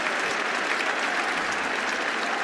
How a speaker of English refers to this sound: 50 partnership between these two as well. Round of applause from the crowd.